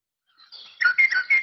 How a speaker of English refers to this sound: If I pull up my northern mockingbird, I was trying to see if it was a match. And so I pulled up the northern mockingbird on my iPhone here. And it has, of course, the bird songs listed inside.